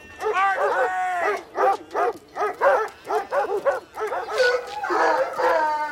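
The Bumpus Hounds from the film A Christmas Story, a pack of 43 hounds, bay loudly, a quick run of rhythmic barks framed by long, wavering howls at the start and again near the end.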